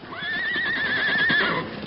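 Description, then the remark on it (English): A horse, Scout, Tonto's horse, gives a loud, wavering whinny lasting over a second, with faint clip-clopping hooves underneath. No one speaks. “That scout, Tonto's horse.”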